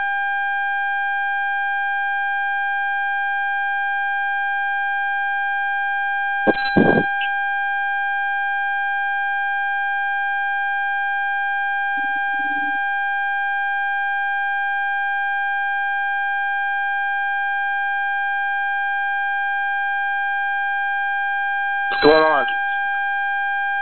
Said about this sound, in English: Boy, there's some feedback.